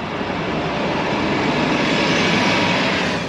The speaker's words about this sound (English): And that is a bus you might take if you come to Portland.